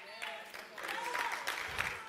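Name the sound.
audience clapping hands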